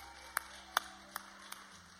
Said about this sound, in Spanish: Un aplauso a Yahweh. Aleluya.